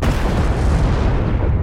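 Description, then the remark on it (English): The world's first atomic bomb detonation, the Trinity test in New Mexico, roars as a loud, continuous rumble, heavy in deep bass with a harsh crackling edge, holding steady for over a second with no voices. “A crack and a rumble, like lightning and thunder.”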